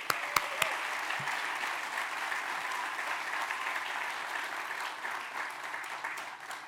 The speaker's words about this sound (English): Let's give them a warm applause.